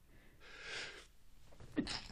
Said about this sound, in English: Oh, there's that sneeze from last week.